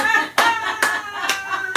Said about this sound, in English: I clap for that one on myself. I know. I clap for myself on that one.